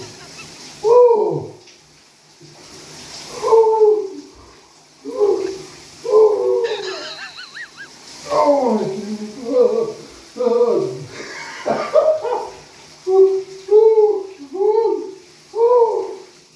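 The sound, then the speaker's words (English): A dog howls and whimpers in a string of short, wavering cries, some rising and falling in pitch, repeated steadily with brief pauses between them. “A dog.”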